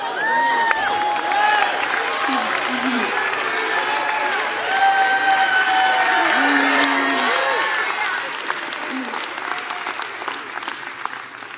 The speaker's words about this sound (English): Now stomp your feet. You're under my feet. Go.